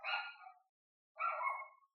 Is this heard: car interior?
no